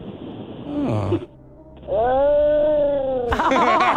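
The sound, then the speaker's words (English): A person imitates a tired house cat ready for a nap with a short mew, then a long, drawn-out yawning meow, ending in a brighter chirpy trill, fairly loud. “Oh, what does a tired house cat sound like when they're ready for a nap?”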